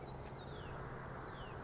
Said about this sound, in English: There, can you hear that bird?